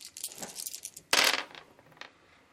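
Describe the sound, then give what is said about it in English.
Several dice clatter across a hard tabletop in a roll to hit, a quick rattling burst that swells into a louder tumble, then a few scattered clicks as they settle. Fairly crisp, with no talking. “You should only be rolling 4 dice for that, right?”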